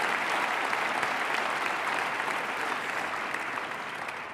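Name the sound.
audience applause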